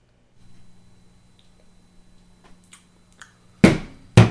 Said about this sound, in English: Cheers, buddy. Here we go. Give me the old tink.